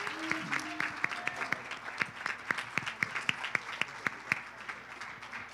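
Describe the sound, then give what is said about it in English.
A group of people at a church service applauds to thank others for their hard work, with sharp, fairly evenly spaced claps that carry on steadily for several seconds, with faint voices murmuring underneath. “Real quick, can we give them a great big hand clap and thank them for all of their hard work, their dedication to the kingdom of God?”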